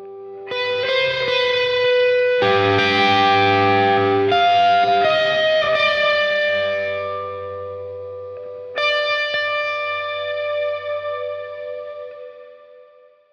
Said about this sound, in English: And to top it all off, in the second half of the song here, the electric guitar gains some distortion to give it some more power.